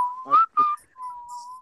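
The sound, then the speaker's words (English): A person whistles a short, wavering tune of a few clear notes, fairly loud, ending on a long steady tone, with no talking. “There we start with the whistling.”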